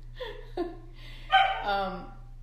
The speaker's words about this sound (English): There go the dogs again.